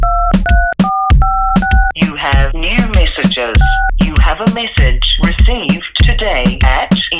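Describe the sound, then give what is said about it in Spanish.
A quick run of about five or six telephone keypad beeps, crisp and evenly spaced, entering a password, before a dense wash of voices and music takes over. “Please enter your password.”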